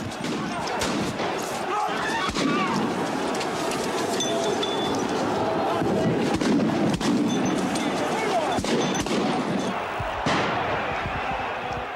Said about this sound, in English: Then, suddenly, the police struck back, firing tear gas and rushing the crowd.